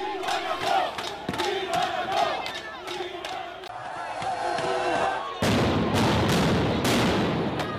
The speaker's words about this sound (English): On the 18th of October, a court order for the eviction was granted by the Cape Town Magistrate Court. This allowed the police to move in and carry out the eviction, using water cannons and stun grenades.